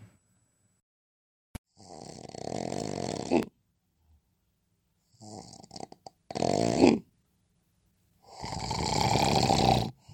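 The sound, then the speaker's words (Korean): A person snores loudly with their mouth open: three long, rasping snores, each followed by a quiet pause. Prominent, with no talking. “혹시 이렇게 입을 벌리고 코를 골거나 숨도 멈춰지나요?”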